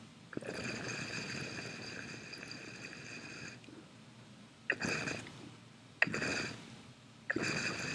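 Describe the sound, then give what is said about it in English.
Heavy water bubbling through a dab water pipe with its whole base filled with water: one long gurgling pull followed by three shorter bursts, with a steady rumble and a bright, whistling tone over the churning water. No one speaks. “Just wanted to give you guys a little sound, because it's like so buttery and like, but you can hear the heaviness of the water, the amount of water it's moving.”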